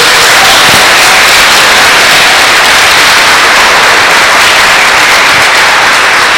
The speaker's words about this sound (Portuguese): Vamos dar uma salva de palmas para eles, por favor.